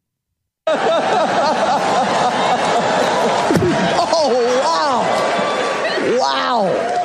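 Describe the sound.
A single sharp open-hand slap to the face cracks out midway, loud and picked up on a microphone, as Will Smith slaps Chris Rock, amid a dense background of overlapping voices and scattered crowd laughter.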